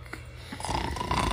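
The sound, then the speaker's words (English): A voice imitates a troll's loud, rasping snore through a snotty nose: a short snorting start, then a long, thick, rattling inhale that swells and stays loud to the end. “And because he had such a snotty nose, it was really loud snoring, like...”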